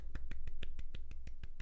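A brief burst of hand clapping for the back-to-back defending champion of the Suck My Pick title, around ten sharp claps in a quick, even rhythm over less than two seconds, with no voices and a low steady hum underneath.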